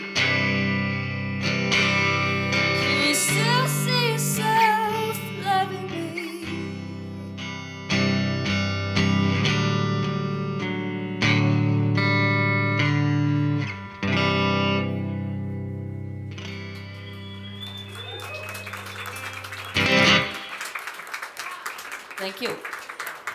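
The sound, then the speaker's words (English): At a live gig in Brisbane, sustained, distorted electric tones ring out in layered chords while a live delay effect repeats each note as echoes. Near the end the music breaks into a brief, noisy wash of sound. “Live delay.”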